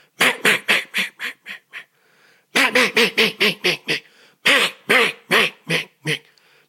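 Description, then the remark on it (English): Loud hen mallard quacks blown on a duck call, three rapid rhythmic runs of raspy quacks separated by short pauses, with no talking. “But so that hen mallard starts to come alive.”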